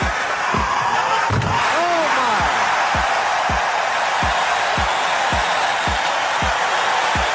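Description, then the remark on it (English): A basketball slam dunk, a Statue of Liberty 360 by Stansberry in a dunk contest, amid a loud, steady crowd roar, with a series of evenly spaced low thuds and a couple of brief high squeaks early on. “This is the Statue of Liberty 360, I think.”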